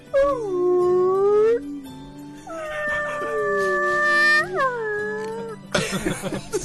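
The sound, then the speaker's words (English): Someone imitates a whale call with long, drawn-out wavering moans that rise and fall in pitch, repeated a few times, then cut off by a brief noisy burst. “Give us something easier, like whale.”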